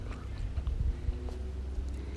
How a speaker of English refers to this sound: I gotta stop chewing gum.